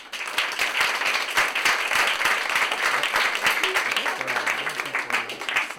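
A crowd breaks into steady applause, a dense wash of many hands clapping at an even, sustained level for several seconds, with faint murmuring voices underneath near the end.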